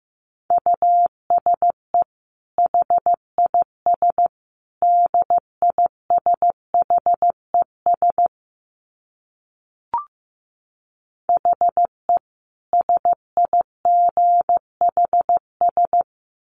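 Morse code sent at 15 words per minute: a single steady mid-pitched beep keyed into short and long pulses in letter groups, with a pause halfway through broken by one faint click.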